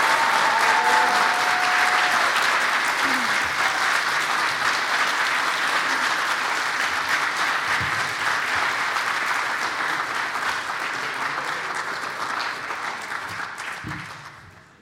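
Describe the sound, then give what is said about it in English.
Sustained audience applause at the Rothko Chapel for the 2023 Rothko Chapel Óscar Romero Awardees as they return to the stage: a dense, steady clatter of many hands clapping that holds for several seconds before gradually tapering off at the end. “So let's give our 2023 Rothko Chapel Óscar Romero Awardees another big round of applause as they return to the stage.”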